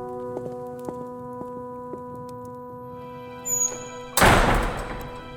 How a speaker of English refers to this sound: Close the doors, friends. We will leave you here until you knock, Wraith.